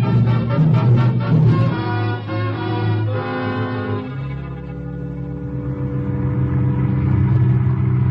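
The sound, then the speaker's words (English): A car engine revs and accelerates as the car drives to the edge of a city, its droning pitch climbing, dropping briefly as it shifts gear, then rumbling steadily onward. Fairly loud for about eight seconds, with no voices. “We get into the car and drive here to the edge of the city.”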